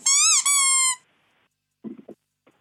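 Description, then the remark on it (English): A loud, shrill squeak from a seat being sat on, drawn out in two quick back-to-back strains lasting about a second, followed by a pause and some faint muffled low sounds. “it squeaks when we both sit on it”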